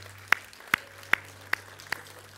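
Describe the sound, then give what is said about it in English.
A standing church audience claps hands together in unison as a hand clap of praise to God, five sharp, crisp claps at a steady, even beat, over a low background hum with no voices. “And as you stand, why don't we put our hands together and let's give God a hand clap of praise.”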